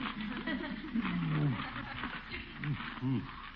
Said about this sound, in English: Oh, a cat. Kitty, one of us will have to get out of here. Go away now. Scat.